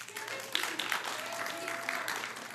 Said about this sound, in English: So, story of, you can clap, it's okay.